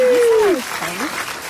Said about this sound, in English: Round of applause.